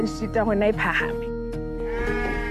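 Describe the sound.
Recently bought sheep bleat in a string of quavering, wavering cries as their new owner, a livestock farmer, takes ownership of them, with a later bleat rising near the end while people talk in the background.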